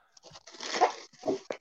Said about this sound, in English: Grinch wrapping paper. Nice.